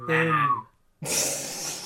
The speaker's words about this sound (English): you keep breathing in before you do your buzzer. I need to project. Yeah. Just constantly breathing in.